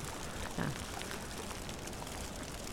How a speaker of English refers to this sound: And the microphones, I think, are getting wet. This is estuarine. And the water's coming in.